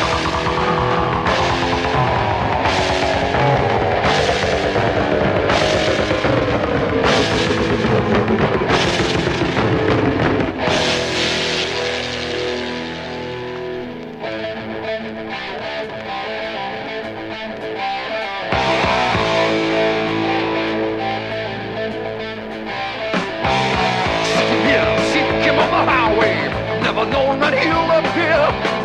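A loud heavy metal song plays without pause, opening with pounding, evenly spaced drum hits and a descending guitar swoop before settling into dense, distorted riffing that fills the whole track.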